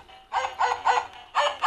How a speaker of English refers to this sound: Here comes the dog again.